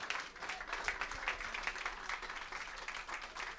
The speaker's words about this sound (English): So I have a round of applause for this terrific panel discussion tonight.